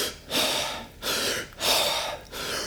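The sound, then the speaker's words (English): Rapid, forceful breaths pumped in and out, about four loud airy bursts in quick succession, a person deliberately hyperventilating as a breathing demonstration, with no talking. “But the problem is you're going to hyperventilate.”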